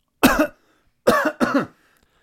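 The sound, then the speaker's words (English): Three sharp, harsh coughs made on purpose: a quick pair at first, a pause, then another burst, each loud and rasping with a throaty edge, and no speech around them. “Did you not know that I was coughing on purpose”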